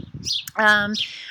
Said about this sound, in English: And I think this bird is really upset that I'm here. She's sitting right over my head chirping at me. She's got a nest. So man, she's loud.